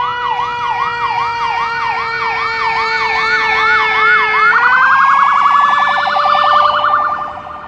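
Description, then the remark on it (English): An ambulance siren wails loudly as it comes down Tulane Avenue, cycling in a rapid up-and-down pattern before shifting to a faster yelp as it tries to get through the traffic; no one speaks. “Oh, here is an ambulance. Coming down Tulane Avenue, trying to get through the traffic.”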